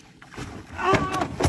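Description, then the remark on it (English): A small fishing boat with some men fishing out on open water, with lapping and splashing against the hull in short bursts and faint voices talking. “Some fellas fishing on a boat and”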